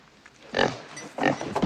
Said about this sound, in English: But when I got Misery here, everything changed. Misery. She just makes me smile so. She's a fine pig is what she is.